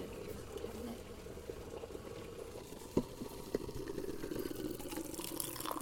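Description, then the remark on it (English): Steady close-up trickle and gurgle of hot water being poured for tea right beside a microphone, with a brief clink around the midpoint and a few small splashes, no voices. “This is where I pour hot water directly on my microphone.”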